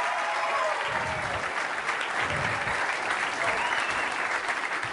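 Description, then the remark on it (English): Steady, sustained audience applause with dense clapping throughout, loud and even in level, with a faint murmur of crowd voices underneath, as guest Tom Ballard of Triple J is brought out. “So, in order of seating, I don't know what's going to happen here, but let's get the round of applause going from Triple J, Mr.”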